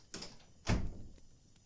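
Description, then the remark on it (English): A door is opened: a light click or rattle first, then a louder, heavier thud and a short fading rumble, with no voices. “Can I open the door?”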